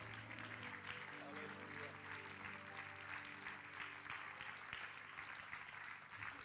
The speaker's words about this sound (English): Can we clap our hands unto the Lord this morning?